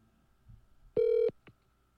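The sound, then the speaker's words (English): A phone call being placed that goes unanswered to a disabled voicemail: one loud, steady electronic tone lasting about a third of a second, followed by a faint click, with no voices and a quiet background. “This voicemail is disabled.”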